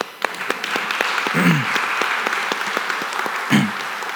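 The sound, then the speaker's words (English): A crowd applauds steadily to celebrate Africa Day at a service, many hands clapping in a dense, sustained patter with sharper individual claps standing out, plus a couple of brief low vocal sounds mixed in. “Can we give a clap?”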